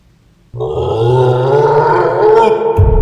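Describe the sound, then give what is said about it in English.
A creature lets out a loud, deep bellow of outrage, bursting in abruptly after a brief hush and holding a rough, growling roar for a few seconds without any talking. “A bellow of outrage filled the darkness.”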